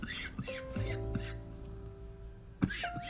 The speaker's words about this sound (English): Pardon me while I have a coughing fit.